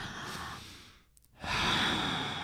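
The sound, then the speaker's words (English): A slow, deep breath taken together, drawn in audibly, a brief pause, then a long, full exhale, with no talking. “Can we do a breath?”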